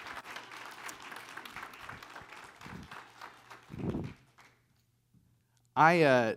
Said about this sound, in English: You can clap now. You can clap after.